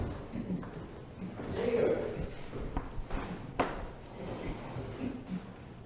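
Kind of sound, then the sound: household object, door opening and closing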